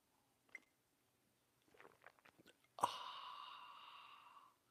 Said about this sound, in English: Fill it with your favorite liquid. I like coffee. And join me now for the unparalleled pleasure, the dopamine hit of the day, the thing that makes everything better. It's called the simultaneous sip, and it's happening now. Go.